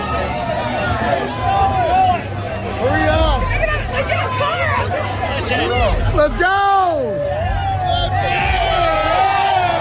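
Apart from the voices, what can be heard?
fans cheering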